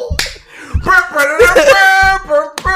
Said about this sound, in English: Is this how we should be clapping? Thank you guys.